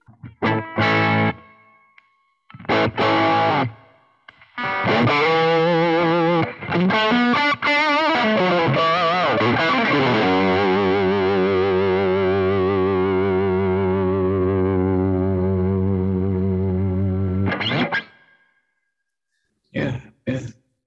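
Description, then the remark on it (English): Loud, heavily distorted electric guitar played through an overdrive pedal with the boost kicked on alongside the distortion for a lead sound: a few short chugs, then a bending lead phrase settling into a long sustained chord that rings out before cutting off, followed by brief stabs. “You know, you got a nice lead channel by hitting kicking on the boost with the distortion, and then a nice rhythm channel, and then a nice clean, and you can balance out the volumes.”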